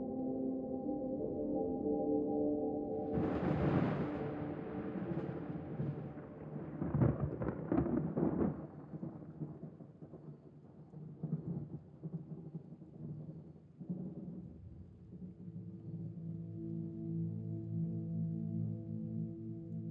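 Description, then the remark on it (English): A deep, rolling rumble of thunder builds after a few seconds, cracks loudly around the middle, then fades into a long low grumble, with steady rain hissing throughout and no voices. “Deep rumble of thunder from the dragon's powers are comforting and reassuring.”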